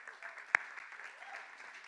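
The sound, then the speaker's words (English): A crowd applauds steadily for members back from college, a dense wash of many hands clapping at an even level, with one sharper, louder clap standing out briefly at the start. “Can we give a hand of applause?”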